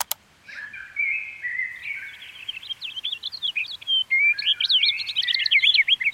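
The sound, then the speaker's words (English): A songbird sings a lively, high-pitched song of rapid chirps, trills and quick whistled notes, growing busier and louder over several seconds, with no voices. “How about another songbird?”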